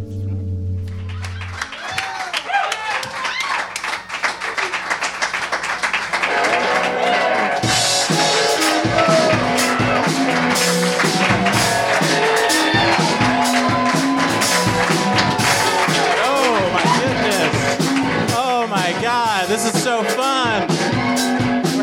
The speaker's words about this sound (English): Oh my goodness, look at this. Look at this beautiful crowd. Wow. Millions of people at Union Hall. Oh my goodness. Thank you so much for coming.